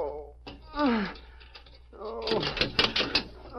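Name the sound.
door being unlocked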